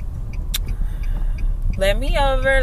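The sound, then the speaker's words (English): A steady low rumble of a car moving through traffic, heard from inside, with a brief click early on; a man's voice starts talking near the end. “Guys, this traffic is ridiculous.”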